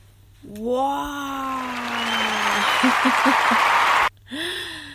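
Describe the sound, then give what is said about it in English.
A sustained wash of clapping applause runs for about three and a half seconds, overlaid with a long falling vocal tone and a few short voiced bursts, then stops abruptly before a voice speaks. “I put thank you for all the claps.”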